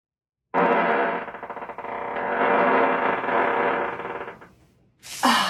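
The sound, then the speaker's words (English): A loud, muffled fart made while wearing leather pants stretches for about four seconds, buzzy and fluttering with a raspy, distorted tone, then fades, followed by a brief hissy burst. “Yeah, you want to hear a fart from the leather pants?”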